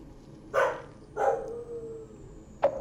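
A dog, Mojo, barks three times with no one talking: two fuller barks about half a second apart, then a pause and a short, sharp final bark.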